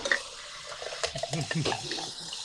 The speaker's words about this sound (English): I gotta pour some water.